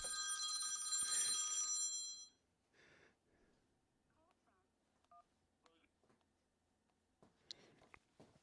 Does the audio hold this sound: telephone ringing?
yes